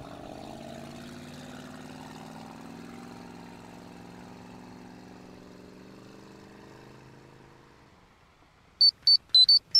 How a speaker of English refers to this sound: JJ and Inara got off Tommy's boat and watched them speed off into their next adventure.